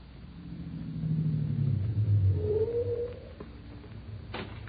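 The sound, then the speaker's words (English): A car engine rumbles low, swells as it draws near, then winds down as the vehicle pulls up and stops, ending with a short clunk. No one speaks. “Take the car around back to the garage”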